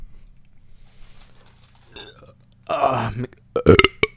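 A long, loud, gurgling burp rumbles out over a faint low hum, followed by a few sharp, abrupt bursts of noise as it finishes.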